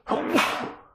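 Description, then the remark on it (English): A single sharp sneeze bursts out, a forceful airy blast that fades quickly, with no talking around it. “Bless you. Thank you.”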